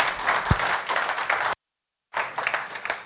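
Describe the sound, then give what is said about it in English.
Audience applause: a steady wash of many hands clapping at moderate volume, breaking off into silence for about half a second before resuming just as dense. “Round of applause.”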